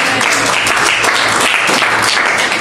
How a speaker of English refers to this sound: Praise the Lord. Clap and praise the Lord.